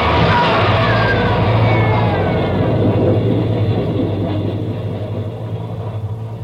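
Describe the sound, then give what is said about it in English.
A subway train roars past in a tunnel, a heavy, continuous low rumble with faint screeching metallic tones, loud at first and slowly easing off as it moves away. “He's trapped, Ben. There's a train coming through.”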